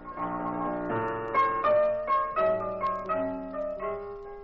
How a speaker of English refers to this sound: But the door was open so we could hear Sammy Page at the piano.